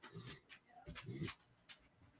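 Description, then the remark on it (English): A dog makes a few faint, short vocal noises, like muffled barks or whines, with no one talking. “Sorry, there's a dog that might be having some issues.”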